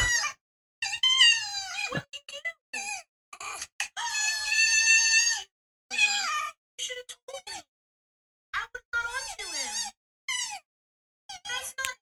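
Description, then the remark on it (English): Pet foxes in a video let out shrill, squeaky screams in a string of short bursts and longer wavering cries, with brief pauses between them, loud, as one fox pushes another off a cat tree, and no one talking. “He pushed the other fox off of the cat tree.”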